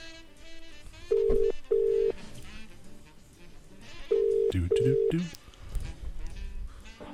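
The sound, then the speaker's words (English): A telephone ringing tone heard over the line in two double-ring bursts, each a steady electronic tone separated by a pause, with soft voices and room noise murmuring underneath. “Oh, it's ringing.”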